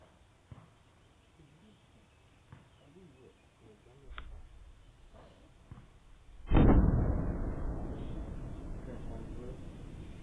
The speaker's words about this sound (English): Here's some of the sonic booming, by the way.